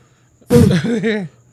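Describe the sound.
A voice imitates a new catsup (ketchup) bottle squirting: a sudden loud, breathy burst followed by a wobbling, gurgling vocal sputter lasting under a second, then silence.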